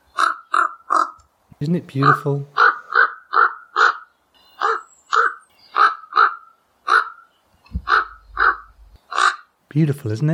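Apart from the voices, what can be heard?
raven calling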